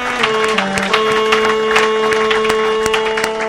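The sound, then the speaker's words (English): An audience claps steadily for a few seconds for a first-time performer, a dense patter of hands at moderate loudness, with a sustained musical tone humming underneath. “One more time for Kevin Alexander. Come on, people.”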